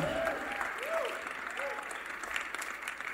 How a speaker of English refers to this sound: Please give them a round of applause.